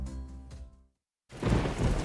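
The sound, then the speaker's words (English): A low, droning rumble with thunder fades to a brief silence, then heavy pouring rain bursts in loud, a dense, steady hiss that fills the rest of the moment, while it is dark outside. “It's pouring rain.”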